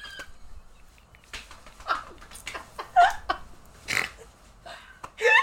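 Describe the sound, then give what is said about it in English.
A voice imitates a rapper's signature dog-like bark with a series of short, rough, throaty barks and grunts at irregular intervals, loud, ending in a sharper yelp. “It was that bark that he used to bark.”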